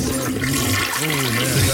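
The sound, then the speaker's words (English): A toilet flushes, a loud, steady rush of swirling water filling the short moment with no voices over it. “Down the toilet, man.”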